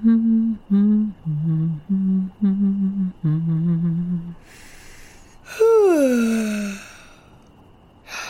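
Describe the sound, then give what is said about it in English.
A hummed nighttime song in short steady notes gives way to a breathy inhale, then a child's long yawn that rises and slides down in pitch before trailing off into quiet. “Mama, it worked. I got my yawn back.”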